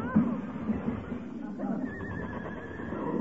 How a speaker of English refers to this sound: What's that? Heavenly days, a runaway horse in this day and age. Hey, it must have busted loose from a delivery wagon.